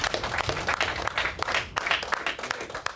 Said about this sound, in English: Man, y'all better clap. Y'all better do it.